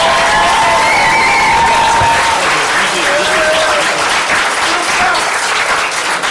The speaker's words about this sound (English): Big round of applause for our amazing finalists who've endured.